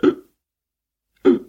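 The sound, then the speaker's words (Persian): Two short, throaty hiccups about a second apart, fairly loud with silence between them, voiced like a drunk restaurant owner hiccupping in the White Horse restaurant, probably a voice imitating it. “صاحب رستوران مثل همیشه مست بود و سکسکه می کرد.”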